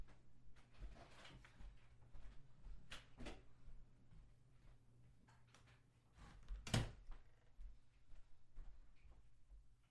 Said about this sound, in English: So I'm just going to close my bathroom door because my sister just left it open. Just one sec.